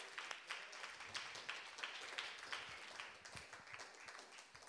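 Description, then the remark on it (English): An audience applauds steadily, a dense patter of many hands clapping at a fairly even level for several seconds, with no voices standing out. “Let's give Vicky now another round of applause.”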